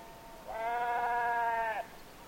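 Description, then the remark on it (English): A single sheep lets out one sustained, wavering bleat lasting over a second, clear against a quiet outdoor background, on moorland overlooking the harbor at Arisaig on the west coast of Scotland. “We leave you this week on the west coast of Scotland, high on moorland overlooking the harbor at Arisaig, a place where seabirds and sheep seem to be in deep conversation.”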